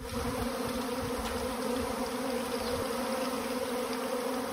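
A steady, dense hum of many bees buzzing together, continuous, with a droning tone that holds evenly throughout and no voices.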